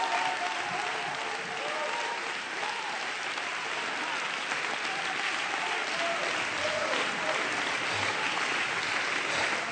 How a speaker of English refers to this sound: Oh, come on, church. You ought to get on your feet and clap your hands for a 7 billion soul harvest.